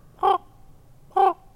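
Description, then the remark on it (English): Two harsh, croaking raven calls, each about a short beat long, separated by a pause of nearly a second, ringing out loudly over a faint low rumble with no talking. “For me, it's about trying to talk to ravens.”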